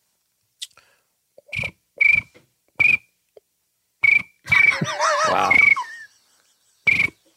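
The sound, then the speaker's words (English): A person mimics a cricket with short, sharp, buzzy chirps repeated at uneven intervals, fairly loud. Midway the chirping stretches into a longer warbling run while another voice briefly exclaims. “But I think my cricket is the best. Let's hear your cricket.”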